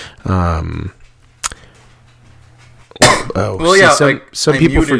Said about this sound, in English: Unmuted mid-cough there. That was fun, if anyone heard that.